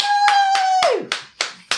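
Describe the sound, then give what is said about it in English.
Steady, rhythmic clapping, about three claps per second, with a sustained high-pitched whoop of a cheer that holds its pitch and then slides downward before the claps continue on their own. “I think we're all collectively cheering.”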